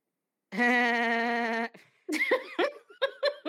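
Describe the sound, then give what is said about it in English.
A person imitates a goat with one long, wavering, nasal bleat lasting about a second, then breaks into several choppy bursts of real laughter. “In honor of his goat status, I'm going to go ahead and do a goat laugh for him.”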